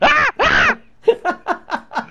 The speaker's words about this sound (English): I don't know why your screams make me laugh